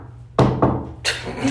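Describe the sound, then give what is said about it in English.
Two quick, sharp knocks on wood, a fraction of a second apart, followed by a longer brushing or scraping noise. A low steady hum runs underneath. “Knock on wood.”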